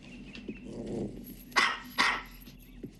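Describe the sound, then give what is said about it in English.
A dog gives a low rumbling growl, then two sharp, loud barks in quick succession, with a quieter yip near the end and no talking. “And the grandfather and his wife, they all see the dog”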